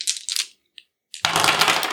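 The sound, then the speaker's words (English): Dice rattle in a few sharp clicks, fall briefly silent, then break into a loud, dense, continuous clatter as they tumble and roll across a hard surface, rolled in a tabletop game to pilot a car; they show three 4s, a 5 and a 3. “give me your roll of 7 to pilot this car.”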